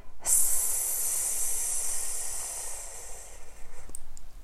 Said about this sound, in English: Strong, soft water. The river rushes. It is close by, and the sound is like a mini mass wave of unending applause in a stadium, a showground, a theatre.